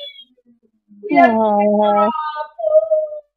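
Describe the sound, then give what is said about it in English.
An orange female cat named Arabella gives a drawn-out, fairly loud meow, followed a moment later by a shorter, softer mew. “We have a kitty sighting.”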